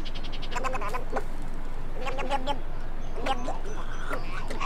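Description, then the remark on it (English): Harsh, gurgling croaks of a male snowy egret's display call, made when males show off for females, come in several raspy bursts, fairly loud, over a steady outdoor background. “Or if male egrets are showing off for the ladies.”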